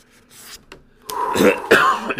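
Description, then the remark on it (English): A person coughs to clear the lungs, several quick, harsh bursts growing louder after a quieter, breathy start, with some throat-clearing rasp mixed in and no speech. “Yeah, clear the lungs.”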